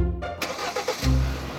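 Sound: car engine starting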